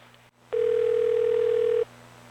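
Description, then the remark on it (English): A telephone dial tone, one steady, loud, unbroken hum lasting just over a second after a brief click, then cutting off abruptly with a quiet line hiss remaining. No one speaks. “Why don't you hang up, dial *82 and unblock your number, and then call me right back.”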